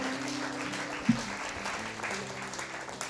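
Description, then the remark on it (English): An audience at a Story Story Late Night live show claps steadily, a dense wash of many hands patting at once, moderately loud and sustained throughout, with a low hum underneath and no one speaking over it. “Yeah, you can clap there if you want.”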